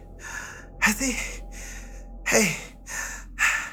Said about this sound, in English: the three of them stood there panting as they were no longer being burned.